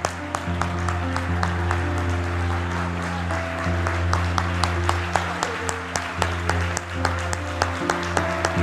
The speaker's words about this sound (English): Why don't you just add a little shout of triumph for just a moment? Come on, I want us to do that for the next 20 seconds right now. All across this house, I want you to clap your hands and I want you to lift up your voice.